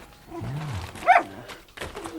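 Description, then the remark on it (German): A dog growls low and rumbling, then lets out a single sharp, loud bark, followed by more throaty growling, with no talking. “Ruhe! Sonst schieße ich auf Hund.”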